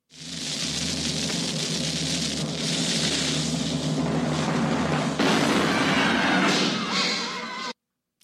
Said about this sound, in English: Fire the cannon.